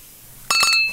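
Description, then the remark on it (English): Beer glasses clink together in a Beer Friday toast, with two or three quick, bright knocks close together, followed by a clear ringing tone that slowly fades. No one speaks. “Cheers, my friend.”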